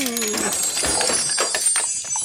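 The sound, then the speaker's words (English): Coins from a bag are fed into a capsule machine slot, a run of small metallic clinks and clicks over a bright ringing hum, with a voice at the start. “Can you hand me that bag of coins so we can figure out what's coming up next?”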